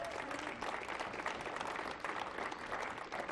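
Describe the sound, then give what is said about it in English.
Steady applause from a sizable audience fills the whole stretch, dense overlapping claps at an even, sustained level with no pauses and no talking over it. “you didn't have them clap for us.”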